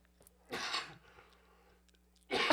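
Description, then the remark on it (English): Two harsh, explosive, loud coughs from one person, about two seconds apart, with quiet breathing and faint rustling in the pause between them and no talking. “Don't judge my coughing.”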